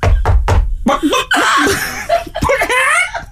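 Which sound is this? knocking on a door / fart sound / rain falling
knocking on a door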